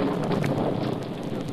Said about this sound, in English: The rain, whipped by the wind, beat hard against the face of a slender girl who fought her way toward the small one-room telegraph office.